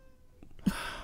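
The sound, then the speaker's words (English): A single cat meow rises abruptly after a short near-silent stretch, clear, holding to the end with no talking over it. “Speaking of cats...”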